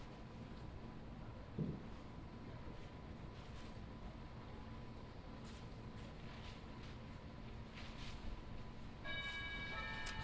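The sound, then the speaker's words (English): A bell rings out toward the end, its bright ringing tones rising over a steady hiss of background noise, with a few faint ticks and clicks before it. No one speaks. “Second bell?”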